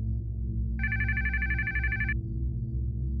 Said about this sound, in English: I awoke to the sound of my telephone ringing.